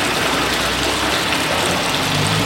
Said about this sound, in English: It's a private company. A worker connects a tube from the tank to the building's cistern. Water begins pouring in, 10,000 liters of it.